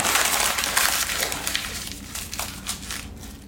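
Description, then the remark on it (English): Dry, hissing rustle of paper rubbing against paper, a steady scratchy friction at first that thins into a series of separate brushing strokes, with no voices. “I really don't like the sound of paper on paper.”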